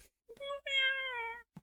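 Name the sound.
cat yowling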